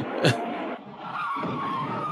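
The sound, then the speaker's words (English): A film trailer scene of cars skidding and smashing into each other: tires screech in a sustained skid, punctuated by a sharp impact burst near the start, with engine roar and chaotic vehicle noise continuing loudly throughout. “Cars smashing into each other's heads, smashing into each other.”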